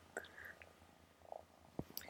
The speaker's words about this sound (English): Besides kitten purrs. I love kitten purrs. I wish I were not allergic to kittens.